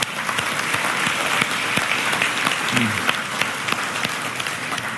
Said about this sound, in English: So thank you, moms, for all that you do to keep the world going. And we applaud you.